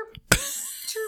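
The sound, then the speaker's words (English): A short, sharp vocal burst followed by a sustained, pitched warble, a person imitating a bird's chirp. It's moderately loud and brief, with no clear words. “Okay, that's not a cricket, that's a bird.”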